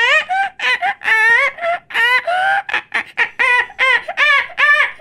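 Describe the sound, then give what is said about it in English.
A person imitates a jungle bird call with a rapid string of warbling, whooping vocal chirps, loud, rising and falling in quick bursts with no talking. “No, you kind of sound like a bird in the jungle.”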